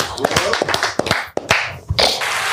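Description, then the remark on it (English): An audience claps in a loud, uneven burst of sharp hand claps that overlap into a busy patter. Voices can be heard mixed in underneath. “Don't clap for this nigga.”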